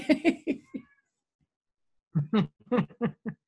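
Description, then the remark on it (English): A cat yowls in two bursts of drawn-out, insistent cries, several in quick succession, then a pause and another run of wails. Clear, with no talking. The cat is wanting more food. “I'm laughing because Lily's in the background yowling. So if you hear this cat that sounds like she's in distress, she's just talking.”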